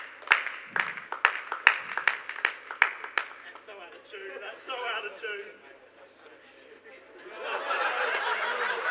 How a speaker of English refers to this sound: They're all waiting. I don't know why they're clapping.